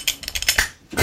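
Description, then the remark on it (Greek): The metal buckle of a belt being worn clinking, a quick series of bright, jingling metallic taps and rattles spread across about a second, with no voices. “Ναι, αυτή η ζώνη που έχω έτσι κάνει, άκου.”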